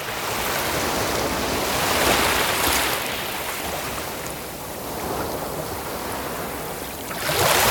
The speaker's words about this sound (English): Let me turn the music down and listen to those waves on the shore.